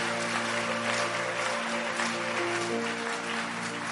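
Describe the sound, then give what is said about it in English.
A church audience claps steadily throughout as a clap offering, a dense, continuous wash of many hands at an even loudness, with sustained organ or keyboard chords humming underneath and no one speaking. “Increase that clap offering because change is coming.”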